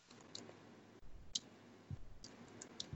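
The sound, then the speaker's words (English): Someone types on a keyboard to search on Google, producing soft, irregular clicks and taps in quick uneven bursts over a low background hum, with no one speaking. “I just can't talk and type at the same time, or I'll start typing what I'm saying.”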